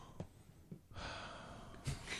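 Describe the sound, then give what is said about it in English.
Loud, exaggerated Lamaze-style breathing: a few short huffs, then a long, forceful breathy exhale ending in a sharp gasping intake, with no talking. “Welcome to episode one of Lamaze Breathing for Men.”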